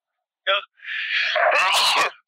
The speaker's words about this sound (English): Pardon me. Bless you.